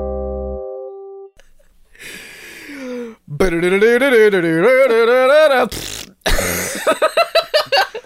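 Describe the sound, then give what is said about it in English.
A drawn-out, wobbling, throaty blast followed by a brief hiss and a sputtering run of rapid flapping pops, like a loud comic fart, prominent with no speech. “did you fart in my eggs again?”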